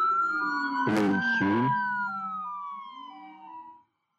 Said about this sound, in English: Yeah, I hear sirens. Are you okay?